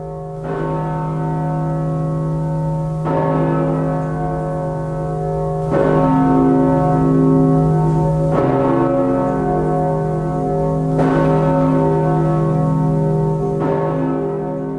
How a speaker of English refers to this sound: The Riverside Borden at the Riverside Church in New York City. Cast in 1928 by the Gillett & Johnson Bell Foundry, with a pitch of C, a mass of 18,600 kilograms, and a diameter of 3.1 meters